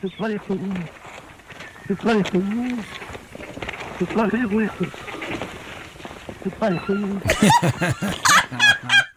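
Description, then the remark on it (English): A male musk duck, Ripper, at a nature reserve gives a raspy, voice-like call during a mating ritual, mimicking a caretaker's phrase "You bloody fool," repeated in several loud bursts with harsh breathy noise near the end. “In an audio clip, a male musk duck called Ripper can be heard repeating the phrase, "You bloody fool," during a mating ritual, mimicking one of his caretakers at the nature reserve.”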